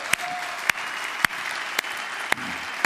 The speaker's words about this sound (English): And would you please would you just give a round of applause for our staff? They're great.